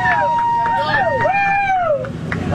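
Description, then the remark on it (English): An excited crowd gathered around astronauts, among them Jeff Bezos, stepping out of their landed space capsule chatters and cheers, with sharp sliding whistles rising and falling over the steady babble of many voices. “For a moment, in case we're able to hear anything of what's happening on the ground as these astronauts, now astronauts, step out of that capsule, and there is a crowd around them.”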